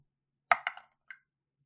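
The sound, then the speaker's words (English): Dice, rolled to decide the twist for a world-building game, tumble onto a hard surface in a quick run of sharp clicks, three fast clacks and then one last lighter tap as they settle, with no talking. “So we're going to roll some dice and see what the twist for this world is going to be.”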